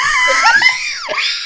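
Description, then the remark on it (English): A loud, high-pitched excited scream from a person, held steadily for over a second with a wavering pitch and a brief dip near the end. “I need to scream for that one.”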